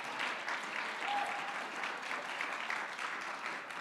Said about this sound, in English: God and man working together in unison will save the world. I wish you would clap your hands if you believe that.